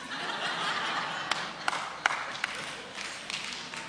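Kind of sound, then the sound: crowd, audience clapping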